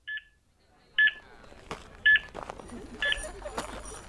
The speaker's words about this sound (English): At 102 meters, the beeping seemed faster than before. Then, at 135, at its slowest.